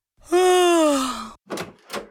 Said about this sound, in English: The door opened.